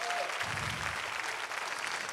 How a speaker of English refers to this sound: We ought to applaud them. Give them a hand clap of appreciation.